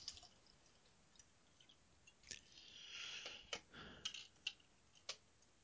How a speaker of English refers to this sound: Excuse the pouring of wine. Oh, yeah. Drink. Yes, drink.